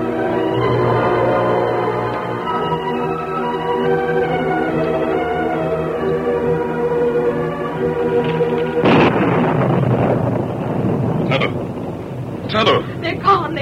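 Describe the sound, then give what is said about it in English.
Sustained orchestral-style tones give way to a sudden loud crack of thunder before a rainstorm, spreading into a long, noisy rumble, with a few sharper bursts near the end. “Hear that thunder? It's going to rain horseshoes around here pretty soon.”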